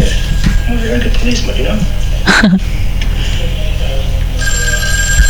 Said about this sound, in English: Answer your phone, god damn it, it's your wife.